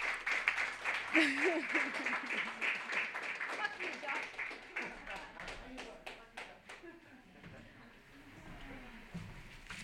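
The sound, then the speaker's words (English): Steady audience applause at a reading, for the featured reader: a dense patter of many hands clapping that runs for about ten seconds and thins out toward the end, with a voice speaking over it. “One more round of applause for our featured reader,”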